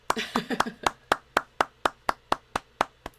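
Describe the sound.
A brief round of close, sharp hand claps, quickly settling into a steady rhythm of about a dozen evenly spaced claps, with a voice briefly heard at the start.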